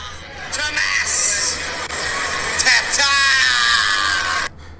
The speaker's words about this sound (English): Some drunk Frenchman yelling into the camera.